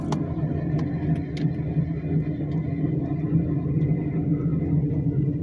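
A car with noisy brakes makes a heavy, droning rumble that fills the whole stretch at a steady level, deep and bus-like, with a few brief scraping clicks near the start and no voices.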